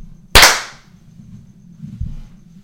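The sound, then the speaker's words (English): A single loud, sharp hand clap of the kind used to sync recordings, cracking out over a quiet low hum, followed later by a soft low thump. “It doesn't matter as long as you sync the clap.”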